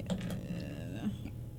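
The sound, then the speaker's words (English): A rapid clatter of small hard dice being pushed and shuffled around as someone sifts through a pile of them, with busy overlapping clicks throughout. “Sifting through dice.”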